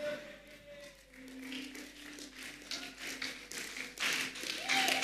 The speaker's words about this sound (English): Clap your hands.